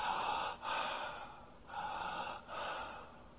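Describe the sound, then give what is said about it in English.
A person imitates the deep, connected breathing of a dying person in the last 24 to 48 hours of life: long continuous breaths flowing into one another in a steady cycle with brief dips between, fairly loud, with no talking. “What did they do in the last 24 to 48 hours? They started to breathe like this.”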